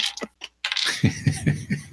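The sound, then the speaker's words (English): A few sharp clicks, then a real pink eight-sided die (D8) rolling across a tabletop for a perception roll in a tabletop game, landing on 4: a continuous clattering rattle with a quick, steady series of knocks as it tumbles, fairly loud, with no voices. “It's a nice thing about real dice.”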